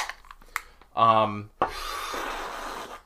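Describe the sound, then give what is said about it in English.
A shaken-up beer can cracks open with a sharp snap during the intro of the show Beer on the Keyboard, followed by a steady, loud fizzing hiss of foam that lasts over a second. A brief squeaky tonal sound comes just before the snap. “Every Beer Crack Intro”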